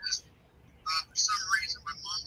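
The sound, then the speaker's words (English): A thin, tinny voice of the speaker's mother on speakerphone plays through a phone's speaker in short, choppy bursts, sounding hollow and slightly echoey, with brief gaps between phrases. “And it's echoing off the phone.”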